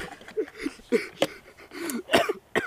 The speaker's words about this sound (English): You made me cough.